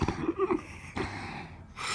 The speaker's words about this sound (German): Mitten im Versuch, sich auf Kopfrechnen zu besinnen, sank ihm der Kopf auf den Tisch und er begann zu schnarchen.